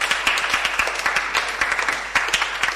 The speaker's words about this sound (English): The clapping has stopped already.